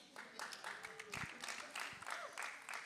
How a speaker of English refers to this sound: Donovan played at UCLA, so he's clapping for UCLA